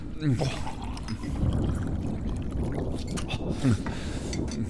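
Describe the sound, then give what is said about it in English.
Water pours steadily into a cup in a continuous gurgling, splashing stream lasting several seconds, with brief murmured voice sounds underneath. “Oh, God, water. Pass me that cup.”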